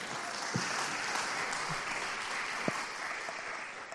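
Steady applause from an audience, a dense wash of many hands clapping at an even level for several seconds, with a few sharper individual claps standing out.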